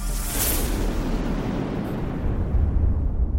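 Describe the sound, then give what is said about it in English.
A booming thunder sound effect for the Daily Thunder show: a sharp crack with a bright hiss at the onset, then a deep, sustained low-end rumble that rolls on loudly for several seconds without fading. “It's Daily Thunder, booming out the truth of Jesus Christ live every weekday morning from the Ellerslie campus in Windsor, Colorado.”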